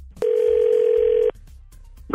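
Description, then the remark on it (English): A telephone line tone as 102.9 The Wolf radio station calls for its Second Date Update segment: a single steady, low-pitched electronic beep lasting about a second, followed by faint line hiss before a voice begins at the very end. “We're calling from 102.9 The Wolf radio station.”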